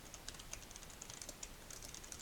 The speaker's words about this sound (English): Yeah, sorry. I'm typing something to a group project thing right now.